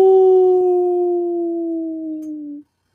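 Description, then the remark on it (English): A single long, steady howl sustained for about two and a half seconds, loud, drifting slightly downward in pitch before cutting off. It's a person's voice imitating a wolf. “And imagine if they the Red Wolves. That new stadium's the Red Wolf, the Wolves Den.”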